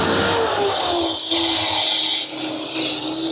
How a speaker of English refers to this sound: I'm gonna wait for this loud truck.